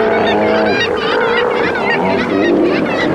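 A dense chorus of Steller sea lions in Alaska calling, with loud, overlapping honking roars and bellows that wobble in pitch and continue without pause throughout. No one speaks.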